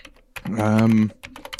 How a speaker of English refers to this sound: typing sound effect, going on Wikipedia.